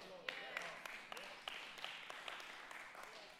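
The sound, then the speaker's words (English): Faint audience applause, a steady wash of soft clapping with a few sharper claps standing out irregularly, continuing for the whole stretch without anyone speaking. “With that many applauding, I'm going to run for office.”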